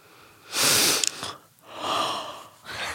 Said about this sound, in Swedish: Gäspar.